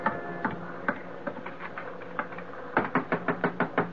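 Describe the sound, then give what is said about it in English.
Sharp knocks rap on a door aboard a ship, a slower irregular series first, then a quick insistent run of about six loud blows near the end, with no voices. “Come on, open up, Reedy.”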